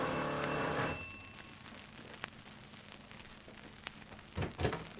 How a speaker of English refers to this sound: All right, ring the bell.